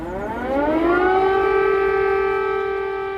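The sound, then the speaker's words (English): A loud air raid siren in Kyiv, Ukraine, in 2022, signalling the full-scale invasion, winds up in pitch and settles into a steady, sustained wail, with a low background rumble and no voices. “Air raid sirens in Kyiv, signalling that the full-scale invasion of a European country in the year 2022 was well underway.”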